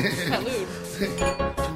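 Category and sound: household object, wine glasses clinking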